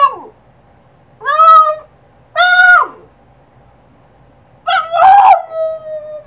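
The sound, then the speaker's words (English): A dog howls to its owner in three loud bursts separated by short pauses, each pitch sliding and wavering with a sing-song, almost word-like lilt that sounds like "I love you"; the last howl runs longer and bends downward. “This is a dog saying to its human mother or its owner that he loves her.”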